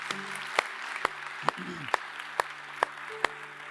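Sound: audience round of applause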